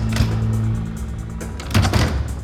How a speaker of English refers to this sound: Hercules shut the door to the smaller room.